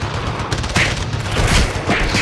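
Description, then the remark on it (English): Loud, dense gunfire crackles throughout during a spy fight, with several heavier bursts of shots standing out against a constant rattling barrage and no talking. “Are you making gunshot sounds, …?”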